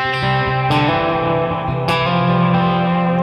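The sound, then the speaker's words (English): Loud, distorted electric guitar notes run through a Memory Man analog delay set to about 500 milliseconds, with some Echoplex, sustained tones smearing into echoing repeats roughly half a second apart, with two sharp pick attacks cutting through the wash. “With some Echoplex. That's actually Memory Man. At like 500 milliseconds.”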